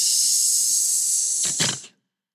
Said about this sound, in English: What is that? That's my sound effects. Hissing. Oh, hissing.